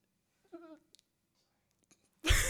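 A man sneezes: a short voiced wind-up, a pause with a couple of faint clicks, then a sudden loud, breathy burst that cuts off at the end. Nobody speaks.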